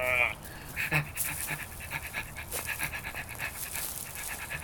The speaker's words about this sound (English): Hey, come on. You tear my sleeve. Doggy. Dog, stop it. Let go.